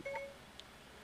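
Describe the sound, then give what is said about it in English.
A phone's Siri voice assistant gives its short electronic activation chime, a quick layered tone near the start followed by a tiny high blip, faint against a quiet background with no talking. “My phone Siri turned on my phone and, you know, heard me talking about, like, I hope I didn't offend all the Christians and shit, and it's looking up city planters for me.”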